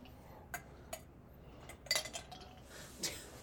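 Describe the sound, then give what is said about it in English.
Oddly shaped ice cubes clink into a glass: a few scattered taps, then a bright cluster of ringing knocks and one last clink, over a low steady background hiss. “These things are really weird shape, Neil. The ice cubes?”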